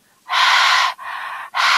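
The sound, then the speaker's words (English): A voice imitates the shallow, strained throat breathing of a person right before death: three raspy, quick breaths in close succession, fairly loud, with no talking. “If you've watched someone in their deathbed and you've heard they're breathing from their throat.”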